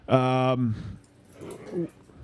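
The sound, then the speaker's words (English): A dog gives one loud, drawn-out bark, followed by a couple of fainter, muffled barks or yips. “Dogs got serious for a second.”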